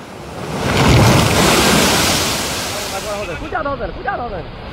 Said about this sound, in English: there's always a segment every few shows where people are just getting just rocked by waves, and I'll be honest with you, I could watch it all day long.